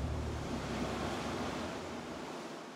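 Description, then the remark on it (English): Heavy ocean surf crashes and churns beneath a steady roar of howling wind in a storm at sea, waves splashing over a boat, a dense, continuous wash of stormy water that stays loud throughout without any voices. “The wind howled, the rain came down in torrents, and the waves got so high, they splashed right over the boat.”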